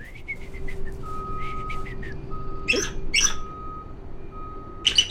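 A bald eagle, perched inside a museum's raptor center, gives a high, chattering cackle: a quick run of thin piping notes, then a few loud, harsh bursts spaced a beat apart, over a steady background hum.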